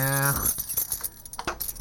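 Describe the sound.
A set of car keys jangles up close, a few bright metallic clinks and rattles in quick irregular bursts, right after a short voiced sound at the start.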